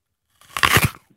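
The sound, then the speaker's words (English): A single loud, crisp crunch of someone biting into an apple, lasting about half a second, followed by a faint click and silence. “This is the apple. I'm going to give it a bit of a crunch and you tell me what it is.”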